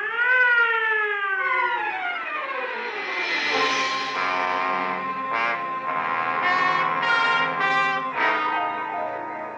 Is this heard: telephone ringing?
no